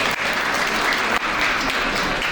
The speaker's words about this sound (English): So, you know, honestly, again, a round of applause. Thank you for making time out tonight.